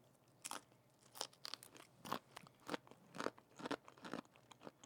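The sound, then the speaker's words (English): Crisp crunching as someone chews a carnival cupcake (vanilla butter cake topped with cotton candy and a cinnamon pretzel crisp), with about eight sharp, rhythmic bites spaced roughly half a second apart and no talking. “Crunch, crunch, crunch.”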